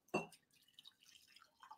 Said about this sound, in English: Finally snapped and using the whole jug. No. I pour it into cups.